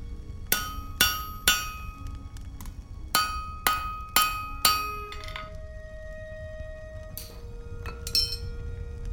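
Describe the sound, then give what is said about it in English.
Metallic hammer strikes ring on an anvil in a forge as a blade is being crafted, a steady, uneven series of about eight sharp clanging blows with bright ringing tails, fairly loud over a low rumbling background, followed by softer metallic clinks. “On the outlands of Homingard, a lone dwarf stood in a forge, the pounding of hammer on anvil resonating through his hardened muscles.”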